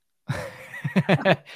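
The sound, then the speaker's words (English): A donkey brays, starting with a drawn-out wheezy tone and breaking into a few loud, rapid, rhythmic honks before trailing off. “So what is Arnold making all those sounds about?”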